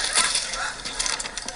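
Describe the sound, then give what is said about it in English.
A brown paper sandwich bag crinkles and rustles, a steady dry crackling with small sharp crunches as it is opened and handled to hold refuse, with no talking. “All right, and then we take a brown paper sandwich bag.”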